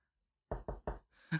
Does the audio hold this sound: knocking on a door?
yes